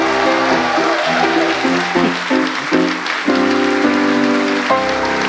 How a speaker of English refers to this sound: And I just want to say, can we have a big round of applause for our singer,